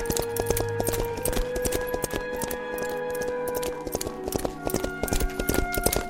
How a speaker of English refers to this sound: she saw her father's horse gallop into the courtyard without her father.